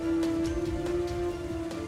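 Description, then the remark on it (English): Steady rain hisses at moderate volume with occasional louder drip-like taps, accompanied by a constant low hum throughout; no one speaks. “But she slithers out the doorway and around the corner into the rain.”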